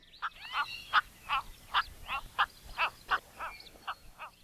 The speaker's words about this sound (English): You can often hear the calls of cattle egrets as they fly overhead in flocks to their roosting areas at the end of each day.